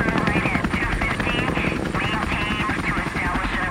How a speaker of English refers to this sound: It was 4:30 a.m. on a Tuesday morning when the helicopters roared over the residential compound in southern Baghdad.